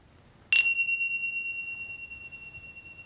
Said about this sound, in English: Listening for the sound of the bell to return some movement, perhaps to your fingers and toes.